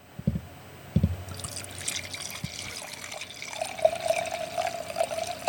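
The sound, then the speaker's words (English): A couple of soft knocks, then a drink pours steadily into a glass as the last glass is poured, the gurgling tone rising in pitch as the glass fills over several seconds. “Wait, let me pour the last glass.”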